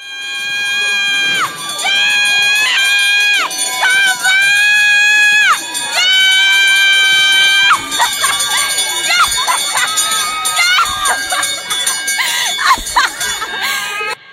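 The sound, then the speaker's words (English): A woman rings the hope bell at the Maryland Proton Treatment Center loudly and steadily for several seconds while a crowd cheers, with high shouts and screams rising over the clanging throughout. “As on Good Morning America, they have a video clip of her ringing the bell.”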